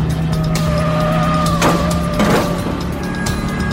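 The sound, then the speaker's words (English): A car speeds past, engine roaring steadily, while tires let out a sustained high squeal and two sharp bursts of skidding break through the noise. “I drove like a bat out of hell, handling the car as though it needed to be taught a lesson.”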